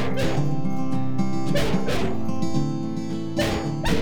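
A dog barks and yips in short, insistent bursts, mixed with high whimpering whines, fairly loud, repeating over a few seconds: the dog Orson jealously trying to get a toy away from another dog, Bradbury, who is chewing on a bone.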